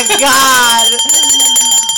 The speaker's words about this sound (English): Dude, ring that bell. Ring that bell.